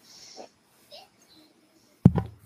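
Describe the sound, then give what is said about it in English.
After a couple of seconds of near-quiet with faint breathy noises, a loud, sudden cough bursts out, followed by a short raspy second hack that trails off. “Oh, hold on, I gotta cough.”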